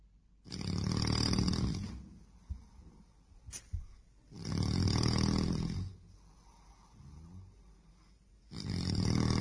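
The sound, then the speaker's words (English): A man snores loudly and steadily, with heavy rasping inhales that come in a slow, regular rhythm and short quiet pauses between them, with no talking. “My father's snoring is only one of the many aspects of my parents' long and most of the time happy marriage that I will probably never understand.”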